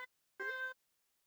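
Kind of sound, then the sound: animal, cat meowing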